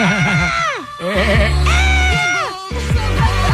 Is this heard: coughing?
no